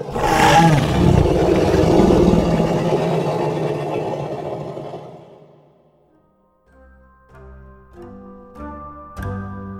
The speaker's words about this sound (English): My eyes slowly traced it up and up and up to its head. My jaw dropped as it let out a deep, bellowing roar.